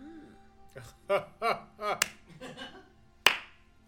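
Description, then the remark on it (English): Two sharp, widely spaced claps ring out over a murmur of voices, the second louder with a brief ringing tail, like a slow, deliberate clap. “Why are you slow clapping?”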